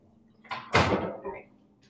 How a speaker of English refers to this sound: My cat is like going inside the bag. Hold on, can you come out? Sorry, this makes so much noise.